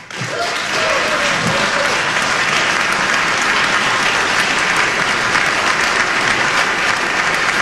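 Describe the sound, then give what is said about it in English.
Loud, sustained applause from a large crowd in a General Assembly legislative chamber after a speech line about parents' rights, a dense steady wash of clapping lasting several seconds without letting up, with a few faint voices in the mix at the start. “Really? No Democrats applauded that? Nobody stood for that?”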